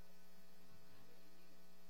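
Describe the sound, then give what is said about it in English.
A steady electrical hum drones on without a break in a church sanctuary. It is low and fairly quiet, with a faint hiss over it and no voices. “What kind of noises do you hear right now in the sanctuary? Just say it out. A hum.”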